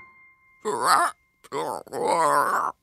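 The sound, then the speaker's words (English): A person croaks out a frog ribbit imitation as an entry in a frog-ribbit contest: three loud, drawn-out, wobbling vocal croaks with a groaning quality, separated by short pauses, and no other talking. “All right, so I'm gonna ask you to make your very best frog ribbits.”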